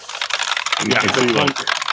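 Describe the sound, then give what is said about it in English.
Rapid, sharp clicking of typing on an old, heavy mechanical keyboard with fewer keys, keys clacking in a steady quick rhythm, with a brief voice murmuring underneath midway through. “Yeah, it's definitely, this may be mass related though, because the mass of this keyboard is about twice the mass of that one, but fewer keys.”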